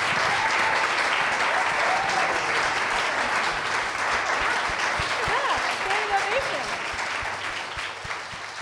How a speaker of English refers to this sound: On that note, can we give them a warm round of applause?